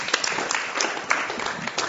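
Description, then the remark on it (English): An audience applauding, a steady dense patter of many hands clapping at once, moderately loud throughout the two seconds, with no one speaking over it. “They're probably the only people that didn't get clapped.”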